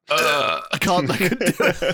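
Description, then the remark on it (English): A loud, drawn-out burp made on cue after a countdown, lasting about half a second, followed by a burst of voices talking or laughing. “You tell me when and I'll burp on cue.”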